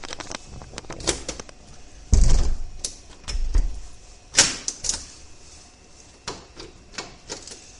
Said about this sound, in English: Key's gone back in the door and the other key has been removed.